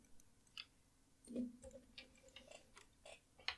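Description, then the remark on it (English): Dice clatter and click softly as they are picked up and handled, a scattering of small, sharp taps at irregular intervals, quiet, with no voices. “All right, well, I guess I'll get some dice and we'll just do the regular thing then.”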